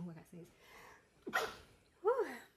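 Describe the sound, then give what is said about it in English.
A single sharp sneeze bursts out abruptly, with a quick intake of breath before it. Brief bits of a voice can be heard just before and right after. “Bless you.”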